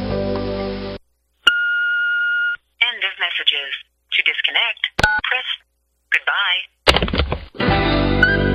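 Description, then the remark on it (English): A single steady electronic beep from an answering machine, lasting about a second, followed by bursts of high, chirpy, sped-up chatter and harsh noisy blips. “please leave your name and number at the beep, and the first available asshole will return your call promptly.”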